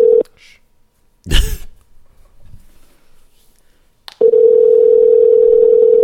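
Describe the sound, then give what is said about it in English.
A phone call that goes unanswered: a steady telephone tone hums briefly, then a handset clatters and clicks; after a quiet pause another click brings a loud, continuous tone that holds to the end. No one speaks. “Who are we calling?”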